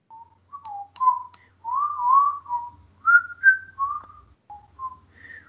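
Someone whistles a bouncy melody of short and sustained notes, rising and falling in pitch with brief pauses between phrases, close and clear with no talking.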